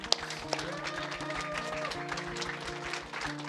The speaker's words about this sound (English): Clap your hands for them.